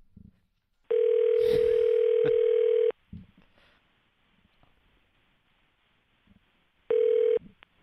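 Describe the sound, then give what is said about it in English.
A phone line rings on an outgoing call: a loud, steady electronic ringback tone for about two seconds, a pause with faint background noise, then a second ring that cuts off shortly. “Why don't we call him?”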